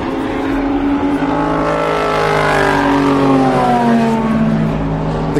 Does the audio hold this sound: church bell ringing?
no